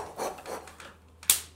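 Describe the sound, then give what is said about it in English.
A voice imitates a cartoon power-up wind-up: three breathy, raspy whooshes, then a short pause and one sharp, bright burst to finish. The effect is fairly quiet overall. “Cartoonish wind-up power.”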